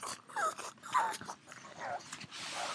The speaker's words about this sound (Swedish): Jag hör, det är min mops som håller på grymt där i bakgrunden om han hörs lite. Han har lite grisljud.